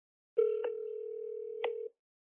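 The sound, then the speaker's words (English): A steady, clear telephone tone holds for about a second and a half, broken by two brief clicks, with no voices. It sounds like a call being placed and ringing. “So before I type in his name again, I decide to call this phone number, which I'm going to do with you right here.”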